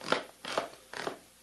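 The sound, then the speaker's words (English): The armrest of a racing chair slides forward and backward three times, each pass a short, raspy scraping rush with brief pauses between, steady and moderately loud with no talking. “the place where you rest your arms like moves forward and backwards”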